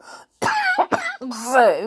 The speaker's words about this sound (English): But whatever book we have, hopefully my voice will be much better and I won't be coughing as much. So, although I actually haven't been quite as bad as I thought I was going to be.